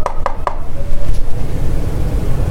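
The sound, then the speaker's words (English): Three quick, sharp knocks in an even rhythm on Bruce Cook's door inside a residential complex, followed by a low, steady background hum with no voices. “After being let into the complex by a friendly neighbour, we knocked on Bruce Cook's door.”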